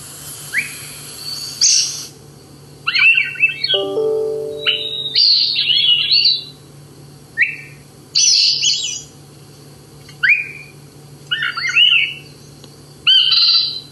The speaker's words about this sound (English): We have another song here from the Swainson's thrush that Chip had at the North Branch Nature Center in Montpelier recently.